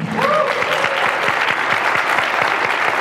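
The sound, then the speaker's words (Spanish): A crowd at the La Mole Comic Con conference program claps steadily to welcome guest of honor Adam Hughes, a dense wash of many hands sustained at an even, fairly loud level throughout, with a brief faint whistle-like tone rising near the start. “Vamos a recibir con un aplauso al señor Adam Hughes.”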